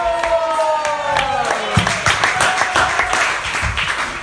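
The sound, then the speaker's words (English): An audience breaks into sustained applause after a kirtan, dense clapping as a lingering musical tone fades out at the start, with scattered voices cheering beneath. “A big round of applause”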